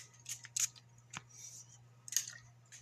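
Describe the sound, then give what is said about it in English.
Cologne sprayed in several short, sharp hissing bursts at an uneven pace, with a faint low hum running steadily underneath and no talking. “Y'all about to hear me spray something, it's just some cologne.”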